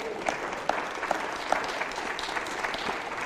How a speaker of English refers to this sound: Somebody clap your hand.